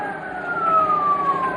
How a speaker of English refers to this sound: sounds like a police siren, doesn't it?